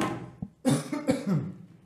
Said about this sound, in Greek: Κάτσε γιατί πνίγηκα. Και θα λέτε πάλι ότι βήχω.